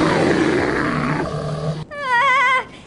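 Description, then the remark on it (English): A loud growl from a large albino Kodiak bear: a rough, rumbling roar for about two seconds, then a brief wavering howl-like cry that cuts off abruptly. No one speaks. “Did you hear that loud growl?”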